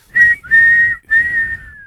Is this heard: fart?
no